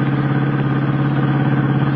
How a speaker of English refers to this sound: Jamming his foot down on the accelerator, Clark Kent sends the car leaping through the foggy night toward the shabby little coffee shop.